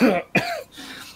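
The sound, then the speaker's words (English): Two quick, raspy coughs in close succession, loud, trailing off into a faint breathy rasp. They sound like a person imitating the pained cough of a man with broken ribs. “And he kind of coughs again.”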